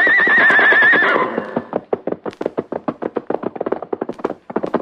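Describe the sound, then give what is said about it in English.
A white horse lets out a loud, quavering whinny, then hooves pound in a quick, steady galloping rhythm that carries on until the end. “As he raced onward, the white horse remembered stories that his mother had told him.”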